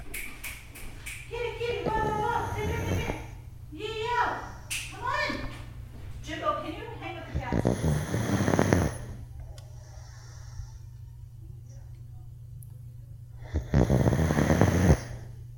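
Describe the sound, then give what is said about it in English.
A pet named Wally snores loudly, with two long, rasping snores separated by a quiet pause. Voices can be heard talking at the start. “Wally's sitting here next to me snoring like a freight train.”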